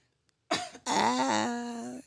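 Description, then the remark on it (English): A single sharp cough, followed by a drawn-out, voiced throaty rasp that trails off over about a second, with nobody talking. “I ain't want to cough on the mic.”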